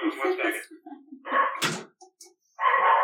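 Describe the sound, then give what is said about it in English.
A dog barks in three loud, harsh bursts with short gaps between them after someone rang the doorbell, along with a sharp knock-like thump in the middle. “Somebody just rang the doorbell and the dog is barking.”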